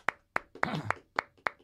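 A small round of applause: about six sharp, evenly spaced hand claps in a steady rhythm, with a brief voiced cheer rising in the middle.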